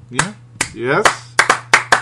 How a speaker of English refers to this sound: Yes. Finally. It's like, why do you think we're clapping? Yeah, you could probably guess.